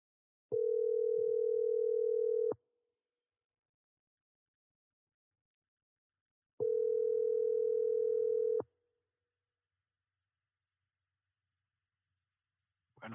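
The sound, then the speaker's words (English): A telephone ringback tone purrs twice, each steady, mid-pitched burst lasting about two seconds with a long silent pause between, heard clearly with no talking. “This motherfucker on the phone. Let me call this nigga.”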